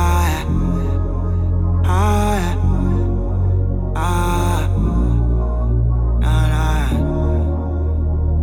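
A song intro plays loudly with a steady, deep bass line and bright, full chord swells that return roughly every two seconds, with no singing or talking yet.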